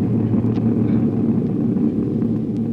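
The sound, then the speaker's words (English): A steady, droning engine hum with a low, buzzing tone holds at an even loudness throughout, like a propeller plane cruising, of a plane flying 5,000 feet in the air, headed for Palm Springs. No voices are heard. “So we take you back a few hours and pick up Jack and the gang who are on their way here by plane. They're now 5,000 feet in the air headed for Palm Springs.”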